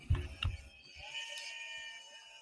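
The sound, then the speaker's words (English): A couple of dull thumps, then a goat lets out one long, wavering bleat that carries steadily for over a second, moderately loud with no talking. “Noisy guys, huh? That's the goat mafia right there.”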